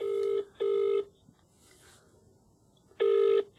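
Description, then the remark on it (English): A telephone ringing tone in the classic double-ring pattern: two short buzzy bursts, a pause of about two seconds, then the next ring begins. It is clear and steady, with no one talking. “Who are you ringing?”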